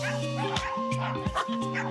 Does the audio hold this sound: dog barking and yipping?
yes